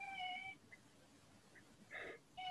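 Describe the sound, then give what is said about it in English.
A male cat meows three times, a drawn-out cry followed by two shorter, brighter mews with quiet pauses between, against a low, steady background hum. “we have a guest appearance from Poppy. He's having a little meow at me.”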